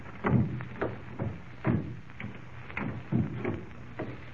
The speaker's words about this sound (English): As quietly as possible, they crept up the creaky old stairs.